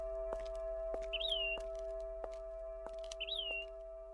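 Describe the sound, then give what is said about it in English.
A bird chirps twice, each a short rising-then-falling tweet, over a steady low hum and the regular, evenly spaced clicking of high-heeled footsteps, outdoors in fog and heavy, flowery air. No one speaks. “I was still kind of drunk and had no idea where I was, but there was something peaceful about the heavy, flowery air and the fog and the birds chirping and my heels clicking.”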